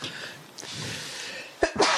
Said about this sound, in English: Okay. That wasn't sound effect, folks. I'm leaving that sucker in. That was a good sneeze. That came out of nowhere.